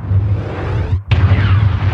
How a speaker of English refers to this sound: Yeah. So that was in an explosion in the Army of the Dead movie. And I was like, it's bad. You can't use Star Wars sounds.